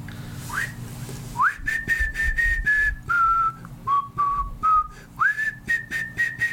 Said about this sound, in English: That's what he was whistling. That's ….